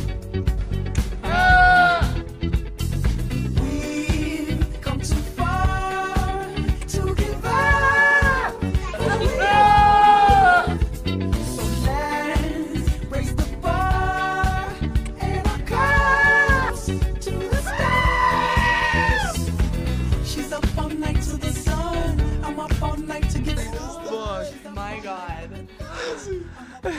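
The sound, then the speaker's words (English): Goat bleats burst out repeatedly over a loud, driving song, their wavering cries rising above the music in short, shaky bursts every few seconds. “Is it wrong that goats always make songs better?”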